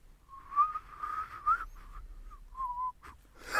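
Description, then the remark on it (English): A breathy, wavering whistle, likely blown by a person, holds roughly one mid pitch in a few uneven stretches with short gaps, ending in a soft rush of air, like a wind-blown plastic bag. “It sounds like a sort of plastic bag being blown about in a breeze.”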